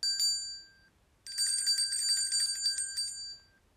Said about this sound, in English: The bell rang and they all went inside.